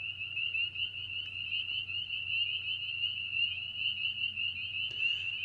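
spring peeper frog calling

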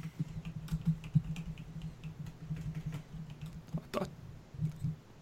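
computer keyboard typing

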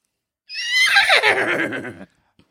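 horse neighing

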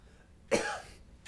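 coughing

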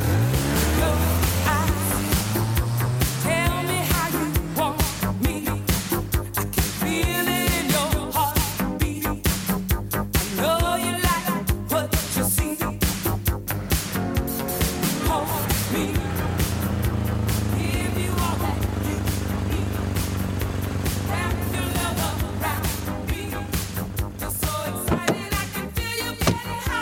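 car driving

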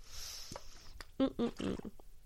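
drinking water

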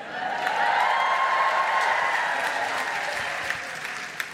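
audience clapping

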